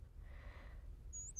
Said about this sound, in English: Hello, little bird. It would seem that we are both in a cage.